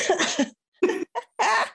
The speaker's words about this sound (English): Can you please stop coughing? I know, it's going to be, this is consistent. It's consistent also, throughout. It's not COVID. I've done a test.